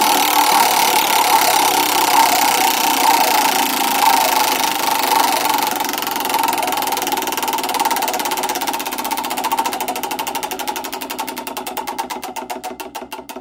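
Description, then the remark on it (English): A prize wheel spins to pick a gift card winner, with a rapid, steady rattle of clicks that blur into a buzzing whir, then gradually slow into separate, distinct ticks toward the end. No one speaks. “And on that note, what do you say we spin the wheel one more time?”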